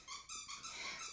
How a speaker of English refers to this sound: It has a squeak. I thought it was without a squeak. Dang it. It was so flat, I didn't think it squeaked.